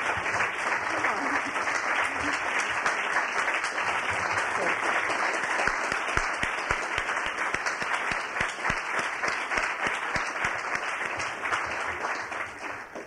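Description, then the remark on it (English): An audience applauds the readers at a reading event steadily for about thirteen seconds, a dense, even wash of many hands clapping at a consistent, fairly loud level, with no one speaking over it. “Will the readers join me, please, and take another hand of applause?”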